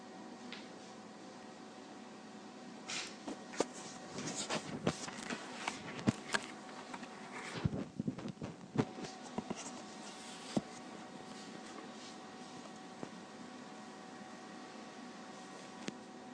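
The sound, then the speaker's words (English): Soft, irregular scratching of pens on paper, with brief strokes and taps overlapping as several people write lists of their aspirations and dreams at once, fairly faint and without any talking. “So take a few moments and just begin to write it on this paper, okay?”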